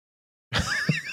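A single sudden sneeze bursts out after a moment of silence, a breathy, noisy blast with a brief voiced edge that trails off over about half a second.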